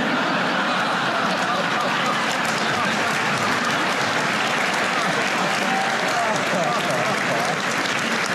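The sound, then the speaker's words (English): A large audience claps steadily and loudly for several seconds, the dense applause mixed with bursts of crowd laughter and scattered voices, holding an even level throughout, as the crowd reacts to a joke about weapons of mass destruction not being found. “And the crowd is eating it up.”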